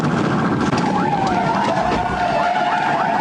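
An SUV spinning out on a highway after a police car strikes it: a wavering, high-pitched tire squeal rises over loud, steady road roar for a few seconds. No clear impact is audible.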